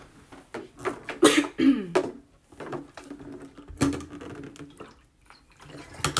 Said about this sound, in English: Sorry, y'all. I know y'all probably like, what is going on? Sorry, I had to get some water. My throat is scratching.